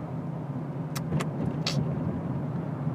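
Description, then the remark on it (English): Steady low rumble of road noise inside a moving, hot car with the air conditioning not working and the window up, a constant droning hum with a few brief hissy clicks and rattles near the middle, no voices. “It's so hot in this car because my AC doesn't work and I can't roll down the window.”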